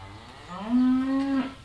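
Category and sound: animal, dairy cow mooing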